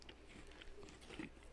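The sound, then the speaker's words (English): Crunching and chewing of an Israeli, gluten-free peanut butter cheese puff, a quick series of soft crisp bites with no talking. “This is a peanut butter cheese puff.”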